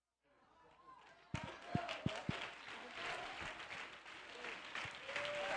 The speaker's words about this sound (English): Come on, quit clapping your hands. I can tell by your response.